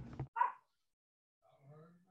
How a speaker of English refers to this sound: Your dog's even singing with you.